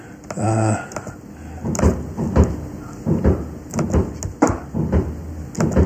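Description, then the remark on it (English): New Year fireworks very close by pop and bang repeatedly in an irregular string of sharp, loud bursts, with a brief whistling tone near the start. No one speaks. “Those fireworks sound very close.”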